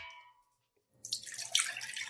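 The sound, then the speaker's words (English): After a brief ringing tone and a moment of silence, four cups of cream pour steadily into a pot, a continuous gurgling splash lasting about a second with no talking. “And so that's 4 cups of cream.”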